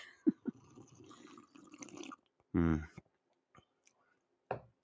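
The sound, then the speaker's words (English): A wet slurping second sip of hot coffee from a cup in the morning, then a short satisfied voiced exhale and a few soft lip smacks and clicks. “Join me for my second sip of my coffee.”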